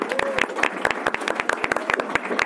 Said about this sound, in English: Round of applause. Yay.